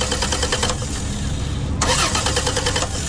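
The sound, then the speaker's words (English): A car engine cranks repeatedly with a rhythmic grinding churn, pauses briefly, then cranks again without catching, loud with no voices. “Looks like you might have to forfeit the game, son. Car problems keeping you in last place?”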